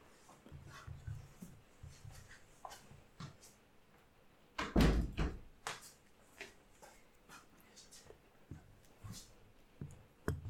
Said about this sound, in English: No, I just let the space be and heard the door shut and all that.